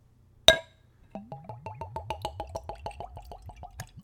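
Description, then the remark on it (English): A sharp click, then whiskey glugs from a spirits bottle with a metal screw cap into a Glencairn nosing glass, poured neat at room temperature, in a quick, steady run of about a dozen gurgles that rise in pitch as the glass fills. No voices. “And the pour.”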